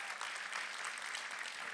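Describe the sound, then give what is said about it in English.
An audience claps together to thank God for the promise of hope, a dense, steady wash of overlapping applause, loud and sustained with no voices standing out. “Come on, somebody clap and thank God for the promise of hope.”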